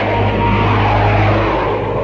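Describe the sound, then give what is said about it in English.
A loud, steady roar of airplane engines passing low overhead, a dense rumbling drone with a deep hum that fills the whole moment without easing. “Please, how low they're flying.”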